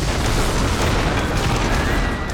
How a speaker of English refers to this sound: At Shango's cry, the sky above him boomed with thunder.